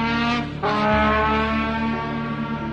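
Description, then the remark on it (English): A professional trombone player's loud, brassy trombone blares through a sound system in a sustained, rumbling tone, dropping sharply in pitch early on and holding low, imitating a loud revving car exhaust, with no talking. “I would play exhaust sounds through the sound system, and I even hired a professional trombone player.”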